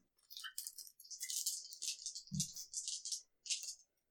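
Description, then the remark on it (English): A pair of dice clatter and rattle in quick bursts of bright clicks, with a soft thud partway through as they tumble to a stop, fairly quiet. “Two dice.”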